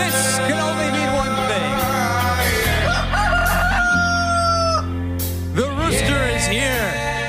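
A rooster lets out a loud, drawn-out crow, its call rising and then holding steady over a continuous musical backing, with a few shorter squawks near the end.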